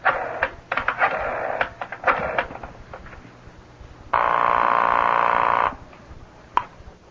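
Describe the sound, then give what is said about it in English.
A telephone being dialed: several quick bursts of mechanical clicking, then a steady, loud buzzing tone that holds for about a second and a half before cutting off. No one speaks. “You want me to call one? On the telephone?”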